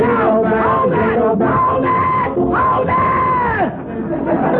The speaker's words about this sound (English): I'll tell you what's the matter. I'm not going to stand for noisy parties like this going on in my house.